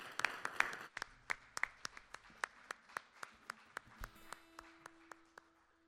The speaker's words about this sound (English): Thank you. Let's give Pastor a round of applause.